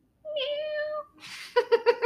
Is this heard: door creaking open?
no